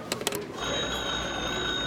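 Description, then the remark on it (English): A few quick mechanical clicks and rattles, like a crank being turned on an old hotel wall telephone to call the operator, give way to a steady, buzzing ring that holds for over a second. Fairly loud, with no voices. “May I use the hotel's phone? Certainly. It's over there on the wall.”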